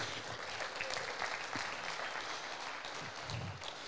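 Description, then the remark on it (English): A crowd claps together in a dense, steady patter of many hands, sustained at an even level throughout with no voices standing out. “You can clap right there if you want to.”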